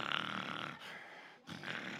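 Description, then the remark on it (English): A voice imitates snoring up close: two rasping, drawn-out breaths separated by a brief quiet pause, mimicking a sleeper's snore. “The rabbit starts snoring.”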